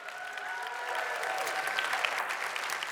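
An audience at a church service claps steadily throughout as the pastor's wife walks off the stage, the applause loud and sustained, with whoops and hoots rising above the clapping.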